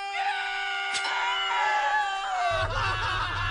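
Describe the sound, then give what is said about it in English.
A person in a TV show trailer lets out a long, piercing scream that wavers and slowly drops in pitch, loud, while a deep rumble rises underneath toward the end. “In space, no one can hear you scream.”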